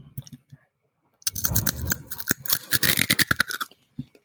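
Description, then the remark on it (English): A loud, crunchy bite of food followed by a burst of crackling chewing, bright and sharp across the range, after a few quiet soft mouth sounds, then fading to a faint click. “That's a good bite. crunchy.”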